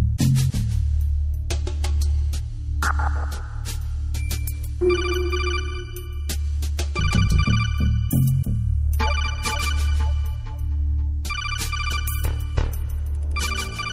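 A synthesized electronic ringtone melody plays loudly and continuously over a steady low hum, with bright repeating tones and chirpy bursts, no voices present.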